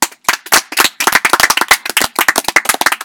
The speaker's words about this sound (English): Everybody clap.